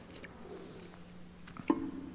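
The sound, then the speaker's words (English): Someone takes a quick sip of water, with soft mouth and swallowing noises and a brief wet click near the end, otherwise quiet. “It says this, right after I take a sip of water.”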